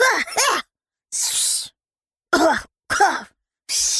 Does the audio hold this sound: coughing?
yes